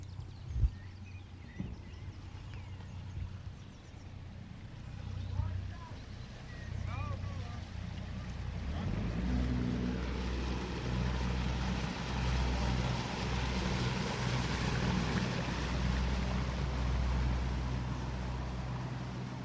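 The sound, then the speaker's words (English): Boat engines drone steadily on a river in the early morning, with wisps of mist along the banks. A low rumbling hum swells and grows louder partway through as a motor passes, with a wash of water noise. “The first boats were already underway.”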